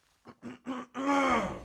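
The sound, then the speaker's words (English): A man clears his throat, three short guttural bursts building into a longer, rough, strained rasp, loud and alone with no talking over it. “Clear your throat, fool.”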